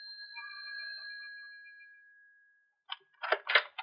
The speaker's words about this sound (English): that evening in September when I rang their bell.